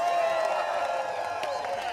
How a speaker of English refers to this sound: Come on, let's have a big round of applause, because that's a lot of foreplay.